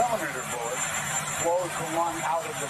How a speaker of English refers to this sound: And look, the audio's a little wonky here because he's standing out by a helicopter. Joe Biden's still saying things like this.